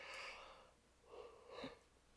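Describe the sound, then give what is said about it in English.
A breathy, drawn-out yawn with an airy inhale and a rising, voiced exhale near the end, quiet, with no talking. “Just yawn through it because it's so boring.”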